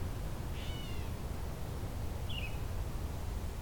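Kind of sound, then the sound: bird, gray catbird meowing call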